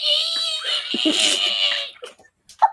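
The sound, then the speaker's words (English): A person's voice imitates a yowling cat in heat: one long, shrill, wavering wail lasting a couple of seconds, loud, trailing off into a few short breathy sounds. “What was that sound? A cat in heat”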